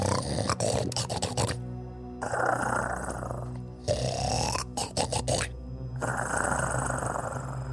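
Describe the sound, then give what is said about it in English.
Loud, snorting snores in a steady cycle: gravelly, piggish snorts alternate with long rasping breaths, roughly four rounds, with no talking. “It's loud, sort of snorting snores.”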